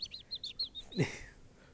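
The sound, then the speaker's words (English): A bird chirps in a quick series of short, high tweets, about half a dozen in a row, with a brief louder rustling burst partway through, moderately quiet. “And then you'll hear like a bird.”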